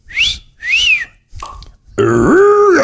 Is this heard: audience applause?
no